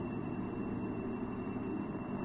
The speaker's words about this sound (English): So you just notice what first comes up, like the cicadas are the most obvious sound I'm hearing now.